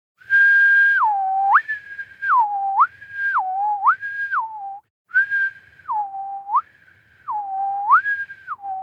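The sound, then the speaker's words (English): A person whistles clearly, alternating between a higher and a lower note in a repeating pattern, with one brief pause midway. No one talks. “I'll whistle the tone while we wait.”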